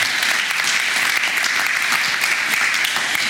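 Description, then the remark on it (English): A church crowd claps and cheers steadily as a guest speaker is introduced, a dense, continuous wash of applause that stays loud and even for a few seconds without letting up. “Give her a cheer.”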